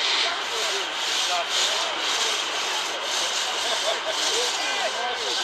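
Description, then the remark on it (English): Fishermen in Durban drag heavy ropes, used to pull in sardine nets, over the wet sand at the water's edge, a steady, coarse scraping hiss that stays loud and unbroken throughout, with faint voices murmuring underneath. “As the excitement subsides, fishermen drag heavy ropes used to pull in the nets over the wet sand at the water's edge.”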